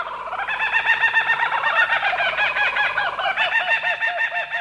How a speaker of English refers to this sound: Yep, Australia's laughing kookaburra is a member of the kingfisher family. And it's been known to dispatch snakes up to 3 feet in length.